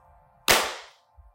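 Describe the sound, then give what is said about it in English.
A group claps once in perfect unison, producing a single sharp, loud crack that rings out and fades over about half a second, with a faint low hum before and after. “You'd never know that it had been 5 or 6 months since we all clapped at the same time.”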